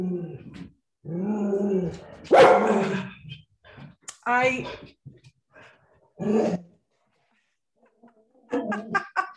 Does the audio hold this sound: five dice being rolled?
no